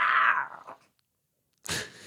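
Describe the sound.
A person mimics an animal growl, a loud, strained, cat-like snarl that trails off, followed after a short silence by a sharp, breathy hiss-like burst.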